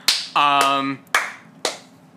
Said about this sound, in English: Slow clap for the N64.